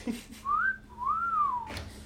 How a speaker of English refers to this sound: You whistling at me?